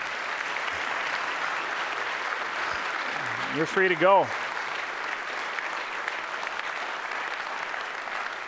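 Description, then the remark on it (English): Steady audience applause fills the whole clip as a dense, even wash of clapping, while a man briefly speaks over it partway through. “Friends, let's give these guys a round of applause.”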